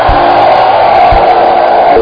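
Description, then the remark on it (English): An audience lifts up their hands and gives the Lord a shout, cheering together in a loud, sustained roar of many voices, with a couple of low thumps underneath and no individual words standing out. “By the power of the Holy Ghost, by the power of the Holy Ghost, lift up your hands and give the Lord a shout.”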